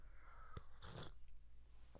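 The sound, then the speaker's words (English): A single quiet slurping sip of tea, a short hissy burst of under half a second, with a soft click just before and another faint mouth click after. No one speaks. “I need to take a sip of tea.”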